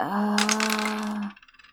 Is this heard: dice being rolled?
yes